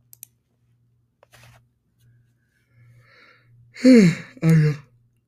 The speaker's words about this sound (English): I'm yawning right now.